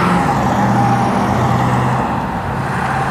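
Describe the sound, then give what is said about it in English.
Steady, loud roar of street traffic with engines rumbling low and cars passing by, a continuous wash of road noise with no talking. “Cars everywhere.”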